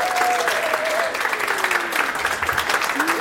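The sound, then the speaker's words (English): A crowd in Sweden claps steadily and loudly throughout, a dense, continuous wash of applause with a few whoops or cheers rising above it, welcoming comedian and podcaster Jonathan Rollins, host of The Power Meeting. “So without further ado, please first of all give a round of applause, everybody, to an amazing comedian and podcaster.”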